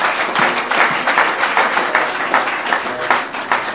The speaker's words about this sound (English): Just clap a round of hands for yourself.